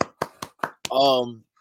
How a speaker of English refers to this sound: Shohei Ohtani is AL MVP. Clap it up real quick.